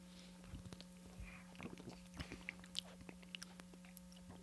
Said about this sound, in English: Yeah. Let's take a sip.